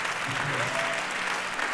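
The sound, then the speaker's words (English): An audience at a church worship service claps in a steady, dense wash of applause that holds at an even loudness throughout, with a faint voice or tone briefly rising underneath. “Go ahead, you're clapping, do it right.”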